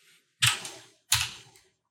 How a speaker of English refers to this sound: Get one whole dice. Of course. Yep. Roll that wisdom.